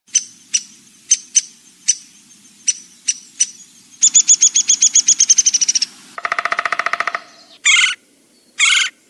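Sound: woodpecker calling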